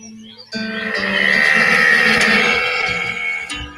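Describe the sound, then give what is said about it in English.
A single long, loud cow-like moo made by a person, starting abruptly after a brief quiet moment and holding steady for about three seconds before cutting off. “That cow noise at the end”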